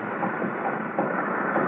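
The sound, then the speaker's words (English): Waves of the Mediterranean, far below, beating on rocks as the moon rises make a steady, rushing roar of surf. The loudness holds fairly even, with a few slight surges, and no voices are heard. “Hear the waves beating on the rocks.”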